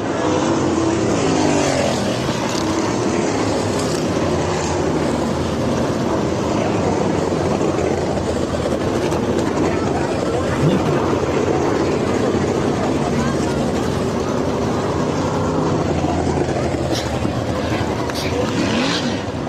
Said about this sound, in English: Well, you hear Tony revved his engine up. So, right.